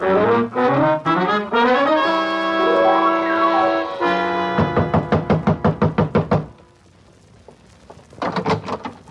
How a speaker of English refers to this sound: Darling, you don't have to knock.